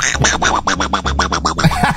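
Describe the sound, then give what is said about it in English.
A voice imitates a duck's quacking with a quick, steady string of about a dozen nasal, buzzy quacks, fairly loud, with no words spoken. “I can't quite do it, the duck noise, but yeah, of course, yeah.”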